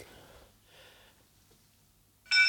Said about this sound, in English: Oh, I love ship's bell. Is that full astern? Definitely, yeah, I think. I like that. Full speed abaft planks, I think, is probably what it means. A proper bell.